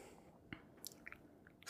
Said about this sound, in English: Oh, she's doing it. She's chugging. She gonna go slurp. So thirsty.